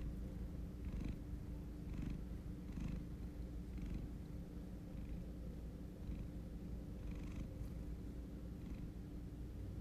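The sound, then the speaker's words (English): A cat named Marky purrs steadily, a continuous low rumbling with rhythmic breathy pulses roughly every second, fairly loud and with no voices. “Marky is roaring.”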